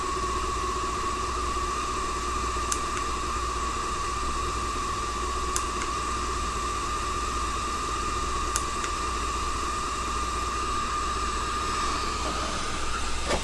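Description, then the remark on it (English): A steady, loud hiss of steam from an appliance, its steam setting just pressed up again, runs throughout with an underlying hum, broken by a few faint, evenly spaced clicks; no one speaks. “So I'll press the steam up again. You can hear it change.”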